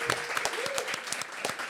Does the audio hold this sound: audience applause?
yes